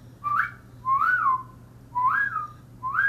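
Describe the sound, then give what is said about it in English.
A person whistles to a pet blue parakeet, four short, swooping notes in a steady rhythm, each rising then falling in pitch, clear over a faint low hum, with no talking. “The blue one like that, my whistle.”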